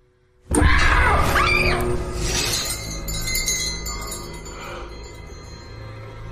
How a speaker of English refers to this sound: Yeah, it's a girl in the basement, tied up to some bells that he... And he now knows, because he just heard it go off, he knows that they're in the basement.